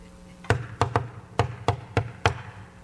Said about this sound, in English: Well, we knocked on doors today. Yeah, you did. You tapped on doors.